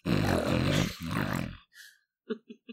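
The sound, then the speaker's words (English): A voice imitates a pug's snorting grunt: a long, raspy, throaty snort in two loud pushes, then a faint huff and three short, quick snuffling grunts. “the pug sound, right?”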